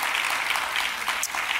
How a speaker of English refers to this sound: Come on, somebody give the Lord a hand clap and an amen.